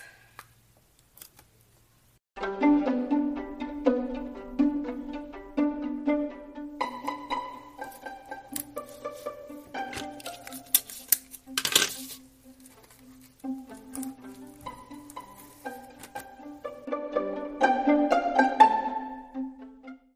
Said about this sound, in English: Oh my gosh, now I have to pull the tape off and get new tape because it's all hairy. It has my hair in it, which is not very good. Okay, let's tape it on again. Okay, tape. One side down. Three more sides to go.